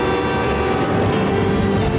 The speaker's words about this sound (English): Oh! Miss Marr, there's a train coming!